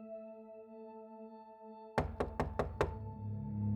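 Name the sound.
knocking on a door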